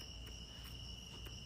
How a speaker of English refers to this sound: It's a bee. No. There's a bee. Where? There's a bee. There's a bee. Sorry. I can hear it buzzing.